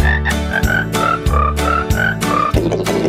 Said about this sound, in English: Come on, you know we have the best holiday music here on The Pet Show. Where else you can hear crickets singing holiday stuff?